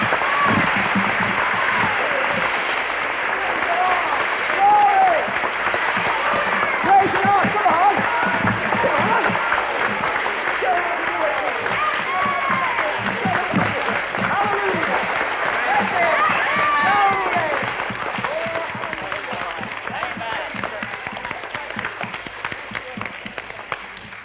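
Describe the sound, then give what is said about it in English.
A crowd at a religious meeting applauds Jesus steadily for over twenty seconds, a dense wash of many hands clapping, with scattered shouts and voices rising through it before it gradually tapers off. “Everybody in this meeting, give Jesus a clap.”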